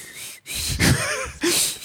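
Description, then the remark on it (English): Someone whistles while breathing in, a thin, wavering tone wrapped in breathy, airy rush, coming in two short bursts with a brief pause between them. “I can do the inhale whistle also.”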